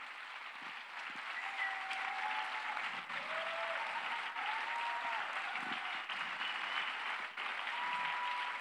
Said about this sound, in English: We just want to honor you by just going crazy and clapping for you. We have a little gift for you as well. Stay standing. We have a little gift for you. You guys can keep clapping.